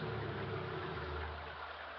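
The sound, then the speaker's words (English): An approaching car's engine rumbles steadily with a low, droning hum and a broad wash of noise, holding at a fairly even loudness for about two seconds with no voices. “Hey, that's not my car.”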